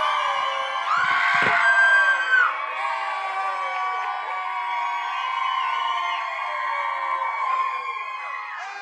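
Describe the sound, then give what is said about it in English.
An audience at Luminous Church, celebrating the church's birthday, cheers and yells continuously for t-shirts being thrown into the crowd: a dense wash of shouts, whoops and high-pitched screams that stays loud and excited throughout, with a brief burst of louder screaming near the start. “Oh, yell, yell.”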